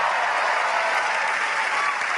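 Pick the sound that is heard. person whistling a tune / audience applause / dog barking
audience applause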